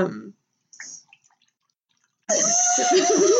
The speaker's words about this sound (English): I'm going to pour myself some 20 Pecan Monogamy so I have a chaser.